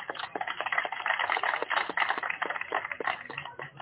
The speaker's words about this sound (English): Before we go further, I think we should give all of us who took part in this tournament and all of you a happy round of applause.